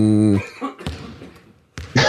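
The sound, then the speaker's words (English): A short Raptors sports jingle opens with a loud, sustained brassy tone, then breaks into a few sharp, raspy coughs, the last one harsh and bursting louder than the rest. “Yeah, it's the coughing one.”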